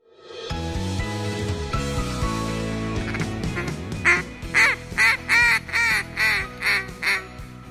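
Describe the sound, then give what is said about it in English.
Duck calls blown repeatedly by Phil Robertson of A&E's Duck Dynasty, producing a quick series of about eight loud, nasal quacks in a choppy rhythm, after a stretch of background music. “Because I know they're sitting on the edge of their chair saying, oh, I hope he blows those duck calls.”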